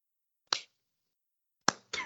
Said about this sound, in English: Silence. Tumbleweed. I don't know how well a sarcastic slight clap comes across well, an audio.